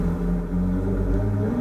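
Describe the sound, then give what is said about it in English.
A neighbor's boat engine, revved to warm it up for the day, runs loud, a deep throbbing rumble with steady low harmonics and a slight rise in pitch near the end; no one speaks. “The neighbor has decided to... Rev his boat engine.”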